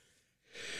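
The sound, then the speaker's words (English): A single loud sneeze from a man: a quiet breathy intake, then a sudden harsh burst of air that carries strongly to the end. No talking. “Yowza, what a sneeze. Bless you, sir.”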